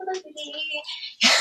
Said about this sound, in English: Hold on 1 second. You can go out there. My little dog wants to get out. He's like whining like a little baby. Go.